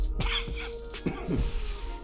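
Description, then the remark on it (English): A harsh coughing fit: several rough bursts in quick succession, with a raspy, throat-clearing quality between them. “That cough is crazy.”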